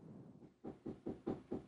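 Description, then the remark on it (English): A quick series of five or six low, hollow thuds in a steady rhythm, like knuckles rapping on a door, as an older gentleman knocks at the door, moderately loud with no talking over them. “Someone's at the door.”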